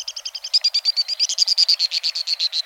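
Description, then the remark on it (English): White-throated swift (Aeronautes saxatalis) calls in a canyon: a shrill, rapid twittering trill of about a dozen sharp notes per second, loud, holding steady with a slight rise and fall in pitch. “Flying at tremendous speed, the white-throated swift is indeed swift, among the fastest of all birds.”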